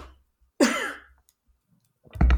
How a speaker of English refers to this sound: Excuse me, I have to sneeze too.